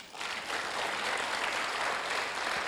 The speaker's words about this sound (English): Give Him a clap.